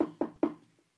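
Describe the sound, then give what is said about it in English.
Three quick knocks on a wooden door of a peasant's home, evenly spaced, each a sharp hollow rap that fades fast, followed by quiet. “And all of a sudden, there was a knock on the door of the first peasant.”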